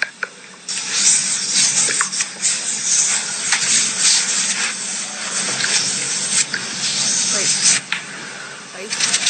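Crisp hissing and soft rubbing as a woman removes her makeup with spray and a pad: a steady wash of brushing friction broken by brief sharper sprays and swipes.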